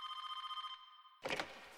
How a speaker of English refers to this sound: The phone rings and it's my brother.